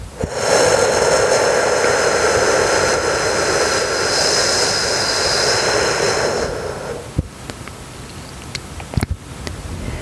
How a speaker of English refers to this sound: Exhale completely through your mouth, making the whooshing sound for a count of 8.